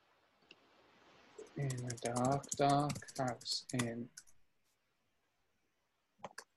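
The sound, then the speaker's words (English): Keys tapping on a computer keyboard in a few quick, scattered clicks as someone types "Skelly Bones" into a search, with a voice speaking briefly in the middle and a final cluster of taps near the end. “I'm typing in Skelly Bones and nothing's coming up, just loads of fucking shite Halloween outfits.”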